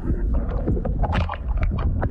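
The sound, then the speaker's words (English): A male humpback whale sings underwater for a mate: a continuous run of low groaning moans and higher rising whoops over a steady watery rumble, fairly loud throughout. “It's a male humpback whale singing his heart out for a mate.”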